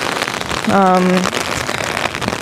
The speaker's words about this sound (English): I do not have a water with me because there's water falling from the sky, and I thought that canceled out. So enjoy this rain ASMR.